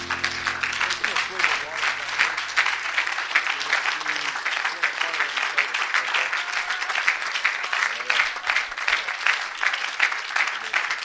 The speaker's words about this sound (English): Let's put our Bibles down, clap our hands to the Lord.